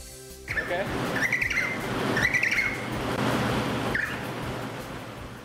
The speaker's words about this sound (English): Okay. So, …, who do you think is squawking there? Baby penguin? You are correct. Whee! That is absolutely right. It is a baby emperor penguin.